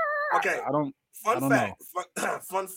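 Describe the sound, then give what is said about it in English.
A voice imitates a dinosaur growl, producing a few strained, pitchy vocal bursts separated by brief pauses, without any real words. “I don't know how what do dinosaurs do? Do they growl?”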